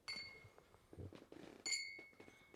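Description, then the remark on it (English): Two bright champagne glass clinks ring out in a toast, each with a sustained high ringing tone, separated by about a second and a half of soft handling noise and faint murmuring. “Let's just get in there. Cheers. Oh, yeah. Salute.”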